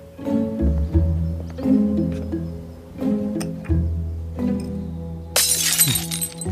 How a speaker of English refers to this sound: Oh, hey, guys. Just smashing some stuff.